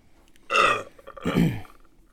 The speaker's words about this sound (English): Did your body edit that burp out of you? I think it might have.